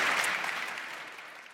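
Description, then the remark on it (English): An evening audience applauds a panel, a dense crackle of many hands clapping at once that holds steady and then begins to taper off slightly toward the end, with no voices over it. “Can we have a round of applause for our panel as well this evening?”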